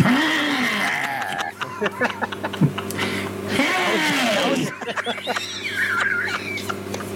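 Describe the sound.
Someone mimics a bird with loud, harsh squawks: two drawn-out, wavering calls rising and falling in pitch, with short chirps and clicks between them over a steady low hum.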